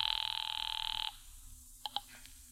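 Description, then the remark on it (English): A telephone at a phone booth rings once with a loud, rapidly trilling bell for about a second, then stops, followed by a couple of faint clicks in the quiet. “Now, when the cab and I had made it back to town, I pulled up at the nearest phone booth.”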